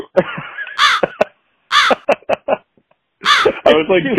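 A crow caws loudly and up close, three harsh, raspy calls spaced about a second apart, with shorter clipped sounds in between.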